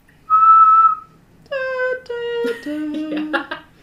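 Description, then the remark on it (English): A person whistles a single steady, high note imitating a bird's warning call, held for under a second, then a lower voice-like sequence of shifting tones follows. “Then one gives a high-pitched warning call. A single note.”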